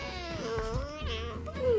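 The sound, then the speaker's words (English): A cat yowls in pain after losing its balance and falling from the top of a building, one drawn-out wavering cry that bends up and down in pitch and swells louder near the end, heard on its own. “Yeah, he's on top of the building, took the wrong step and fell and yelled, ow!”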